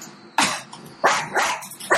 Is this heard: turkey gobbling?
no